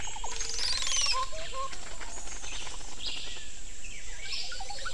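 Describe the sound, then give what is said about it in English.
A Montezuma oropendola, a large tropical blackbird, gives its gurgling call: liquid bubbling notes and a bright sliding whistle near the start, followed by softer scattered chirps against a steady outdoor background, fairly loud. “The vocals have been described as a gurgling sound, like water poured from a bottle.”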